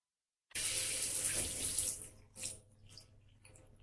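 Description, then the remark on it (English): Hotel shower water gushes steadily for about a second and a half, then shuts off, leaving a few scattered splashes and drips. Fairly loud, with no voices. “I had just stepped out of the hotel shower when the news report started.”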